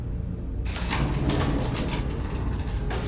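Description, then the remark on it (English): A sliding door to one of the side entrances opens abruptly with a sharp whoosh, followed by a steady, airy hiss over a low rumble that carries on for a couple of seconds. Fairly loud, with no voices. “A door to one of the side entrances suddenly slid open.”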